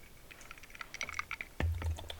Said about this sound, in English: Went for the garnish first. Huh? Oh, I sipped it and went for the garnish.